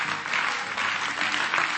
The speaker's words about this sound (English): Would you clap your hands to the Lord and give him praise?